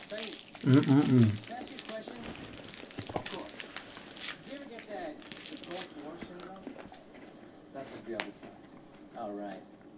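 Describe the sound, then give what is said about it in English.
Irregular crinkling and rustling of a chocolate wrapper while eating continues for the whole stretch, with crackly bursts coming and going, while brief bits of voice sound underneath. “And now, not only do you get to hear us burping and drinking, but also you get to hear us rustling eating with chocolate.”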